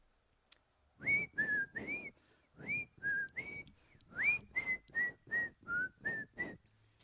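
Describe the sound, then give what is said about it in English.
An old man whistles the tune of knick-knack paddywhack while slowly walking upstairs, about a dozen bright, breathy notes in a bouncy, sing-song rhythm with short gaps, fairly loud and with no talking. “So, old man gets up and slowly walks upstairs, whistling.”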